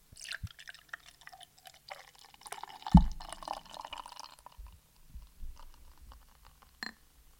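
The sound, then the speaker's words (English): Beer pours into a glass with a bubbly, fizzing gurgle for a few seconds, then a soft knock, followed by quieter trickles and drips as the flow tapers off. “Yeah, pour some out for yourself there while you've while got it in your hand.”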